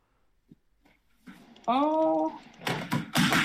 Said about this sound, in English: Oops, I'm knocking stuff over.